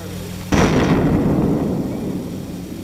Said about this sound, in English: Bomb testing continued for decades, including this 1953 explosion in the Nevada desert.